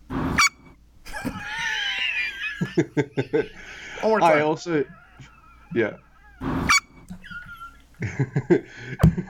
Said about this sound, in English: I also love that, like, you know, you got this big, tough motherfucker, Mr. Bread, and he's got the most adorable little chihuahua dogs that you could think of. Yeah. They sound like a squeak toy.